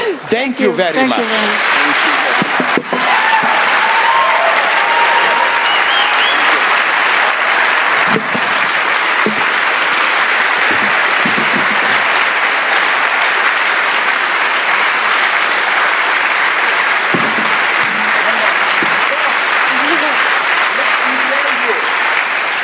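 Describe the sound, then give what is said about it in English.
Sustained applause from a large audience fills the room, a dense, steady roar of clapping lasting over twenty seconds, with a few voices briefly audible near the start. “Save the applause.”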